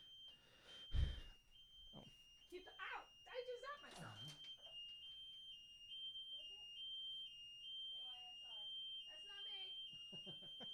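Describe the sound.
A Los Angeles radio station's off-air warning alarm, sounding because a station has gone off the air: a steady, high-pitched electronic tone that drones continuously throughout, fairly faint, with voices talking over it and a brief thump near the start.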